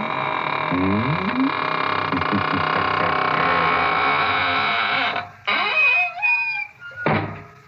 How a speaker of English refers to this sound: And now it's time to close the squeaking door, so good night.